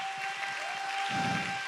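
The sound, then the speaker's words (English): An audience claps together in praise in a dense, sustained wash of applause, with a low murmur underneath and a steady tone ringing through, growing slightly fuller toward the end. “Let's all clap our hands.”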